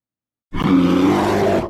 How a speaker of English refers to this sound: Rachel and Axe roared and plowed into them.